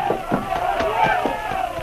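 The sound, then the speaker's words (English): A noisy crowd fills a river dock as river boats head into midstream, many overlapping voices shouting and clamoring at once, a loud, steady commotion with no single voice standing out. “Both river boats were already heading into midstream, and because of the noisy crowd, it was useless to shout.”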